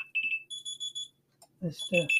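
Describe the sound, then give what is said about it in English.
An electronic wake-up alarm set for 5:30 beeps in quick, shrill pulses for about a second, loud, then cuts off as a man starts speaking. “Are all the alarms. That says it's 5:30, and I'm just getting ready to go out the door to a day job.”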